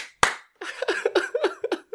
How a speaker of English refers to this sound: give me two claps and a Ric Flair.